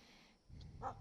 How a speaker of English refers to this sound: I have my dogs out here, and I think they just ran into a coyote.